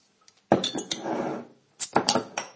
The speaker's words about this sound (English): There you go. So that unmistakable sound of a bottle of Yuengling lager being opened.